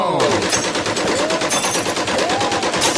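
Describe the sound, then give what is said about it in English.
Rapid, sustained gunfire: loud bursts repeat quickly and evenly for the whole stretch, like an automatic weapon, with a few faint whistling sweeps rising and falling underneath. “I'd rather you shot at them. Outside.”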